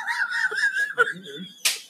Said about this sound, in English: I don't know if I heard it, but he just got slapped. It was fucking weird. So mysterious.